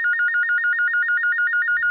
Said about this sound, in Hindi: मुक्ता देखो भाई किसका फोन है